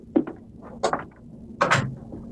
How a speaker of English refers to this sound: Shut the door, son.